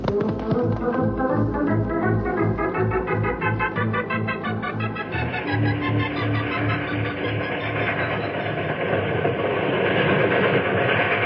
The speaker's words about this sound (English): This train has to wind around and around to get down the mountain.